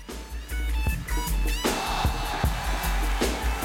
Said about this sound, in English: So there's that crowd roar.